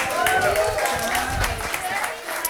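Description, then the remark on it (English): Steady audience applause welcoming a speaker, Will Hesch, to the stage for a talk, a dense wash of many hands clapping at an even volume throughout, with faint sustained tones running beneath it. “So let's give a round of applause for Will.”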